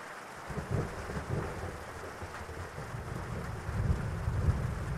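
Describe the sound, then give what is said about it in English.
Steady rain patters on a nylon tent canopy, a dense continuous drumming with low rumbling swells, heard from inside the tent, with no voices. “And I wonder if you've ever been in a tent while it's raining, with the sound of the rain hitting the nylon surface of the tent canopy, and you snuggled in your sleeping bag and relaxing more and more.”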